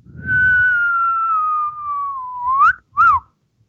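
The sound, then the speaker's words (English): A human whistle holds a long, steady tone that slowly dips, then swoops upward and ends with a quick rising-and-falling chirp, a catcall-style wolf whistle heard alone, clear and fairly loud. “Cat calling.”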